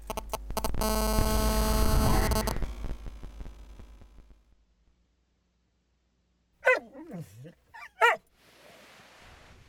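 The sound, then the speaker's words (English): A guard dog gives two short, pitchy barks, separated by about a second of quiet, after a loud droning hum fades away at the start. “Worst guard dog ever.”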